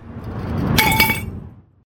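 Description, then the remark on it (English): A few quick taps on a thick glass water pipe, a Thick Ass Glass piece with mouthpiece, stand and percolators, each with a short bright chime, over a low handling rumble, then fading to silence. No one speaks. “From the mouthpiece to the stand to the percolators in the middle, you can tell that this is really thick glass.”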